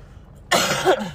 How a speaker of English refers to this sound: Excuse me. I probably will have to edit this because I was coughing so much.